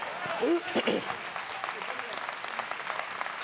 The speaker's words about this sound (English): Well, I could have got a better hand clap than that.